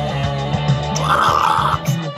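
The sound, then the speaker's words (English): A deep, guttural death-metal grunt: one sustained, rough, low growl lasting about two seconds, loud and raspy with a gritty rattling texture, performed alone without speech. “That was my death grunt at the end.”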